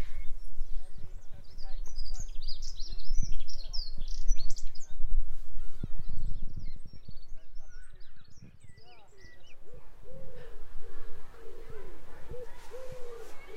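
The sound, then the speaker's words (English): A dunnock sings a rapid, high-pitched warbling jingle of tumbling notes, clear, over a low background rumble that continues after the song fades. “So dunnocks sound like they're going diddly diddly diddly diddly.”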